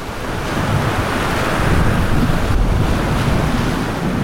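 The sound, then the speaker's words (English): Stormy lake waves churn and crash continuously while strong wind roars and buffets the microphone, a loud, dense rush of noise with no voices. “And when they were in the middle of the lake, the wind and the waves were enormous and the boat rocked from side to side and up and down.”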